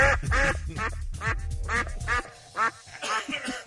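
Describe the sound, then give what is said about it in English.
A viola is scraped to mimic a drake mallard duck, producing a string of nasal, honking quack-like bursts in an uneven rhythm, fairly loud, with no talking. “Makes her viola sound like a drake, mallard duck.”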